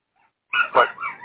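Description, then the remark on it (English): A single dog barks and yelps in a quick run of two or three sharp, high calls, fairly loud, with nobody talking. “Your dog's having a fight tonight. With himself.”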